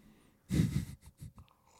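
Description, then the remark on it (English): A breathy slurp of someone sipping coffee, one half-second drawn-in sound followed by a couple of short, softer sips or swallows, with no talking. “That sip of coffee.”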